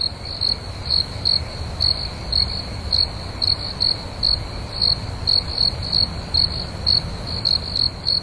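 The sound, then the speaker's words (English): Crickets chirp steadily in a rapid, pulsing rhythm, a continuous high trill over a low background hum with no voices, evoking a quiet night outdoors. “When you're trending right, it's crickets.”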